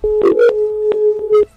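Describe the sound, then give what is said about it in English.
A steady telephone tone hums for about a second and a half while several short, loud, clear dialing beeps cut in at uneven intervals, with no one talking. “Well, I don't know how you guys work this phone.”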